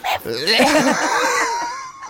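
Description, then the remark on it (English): A person makes high, yappy dog-like sounds with their voice, a short burst then a longer pitched whine, imitating a small dog barking, fairly loud. “Woof woof. That was a very little camp dog.”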